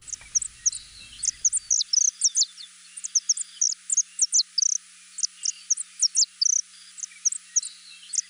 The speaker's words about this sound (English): On today's Manu Minute, we've got the song of the vibrant Saffron Finch, thanks to the Cornell Lab of Ornithology.